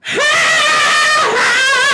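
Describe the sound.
A person lets out a loud, sustained high-pitched scream in imitation of a rock singer's wail, wavering slightly with vibrato and a brief dip in pitch before rising again, lasting about two seconds.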